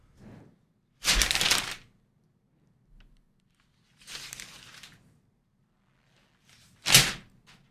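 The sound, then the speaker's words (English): Paper scrapes along the floor as it is pushed under a door: a longer swish, a softer second one, then a quick sharp rasp, with no voices. “When you slide it under the door, after about a second, you can hear the”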